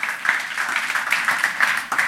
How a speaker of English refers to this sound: Isn't that cool? You want to celebrate that? I heard somebody's wanting to clap. There you go.